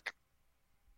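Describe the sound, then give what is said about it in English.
A single sharp click of one key struck on a laptop computer keyboard, crisp, followed by near silence with a faint low hum. “I'm sure people listening to this can hear me like clacking on my keyboard like a 1950s receptionist.”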